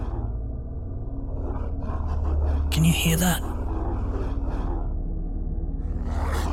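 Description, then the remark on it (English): Deep, menacing growling from huge red-eyed hounds, at least three times bigger than a Great Dane, rumbles low and steady throughout, heavy and unbroken, while a person speaks over it briefly. “Those aren't normal-sized dogs, friend. They're at least 3 times bigger than a Great Dane.”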